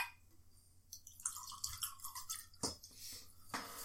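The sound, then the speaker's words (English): Liquid is poured into a glass, a splashing gurgle whose pitch climbs as the glass fills, followed by a few clinks and drips. No one speaks. “Do you want more drink? I do need to hang it more. Oh, yeah, I'm empty. Now you pour it.”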